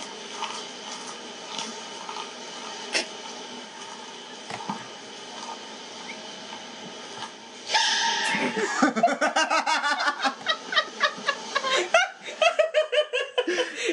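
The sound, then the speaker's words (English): After several seconds of quiet rustling and munching, a sudden sharp panda sneeze bursts out, followed at once by loud, rhythmic bursts of laughter that continue to the end. “Panda sneeze. There it is.”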